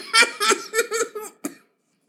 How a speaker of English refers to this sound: Why are you coughing so much?